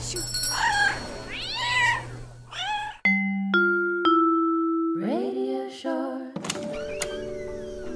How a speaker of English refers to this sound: Oh, man, you're really stepping on cats. It's a lot of cats.